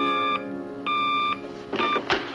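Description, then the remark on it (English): A phone-dialing beep effect: three steady electronic tones, the first two longer and the third shorter, separated by brief gaps and ending in a quick burst of noise. No one speaks. “Hold on, I'm going to call them. Hang on. Get on the Google phone”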